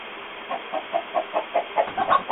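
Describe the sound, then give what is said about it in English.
A chicken in a motel bathroom clucks steadily in a quick series of about ten short, evenly spaced clucks, moderately loud, with no talking. “I went out to drinking, and now there's a chicken in here.”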